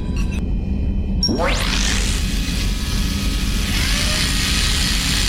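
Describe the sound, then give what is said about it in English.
A manual lock on an emergency exit hatch of the Normandy gives a few quick ratcheting clicks, then a rising mechanical whine as the hatch is forced open with a toothbrush, all over a steady low engine-like rumble. “Pretty sure we broke Traynor's toothbrush getting the hatch open.”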